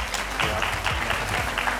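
A crowd applauds steadily, a dense patter of many overlapping hand claps at an even, fairly loud level with no voices over it.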